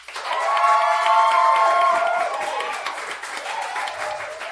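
A large debate audience breaks into loud, sustained applause mixed with whoops and cheers as it votes for the debate winner, strongest at first and then settling into steady clapping that continues throughout.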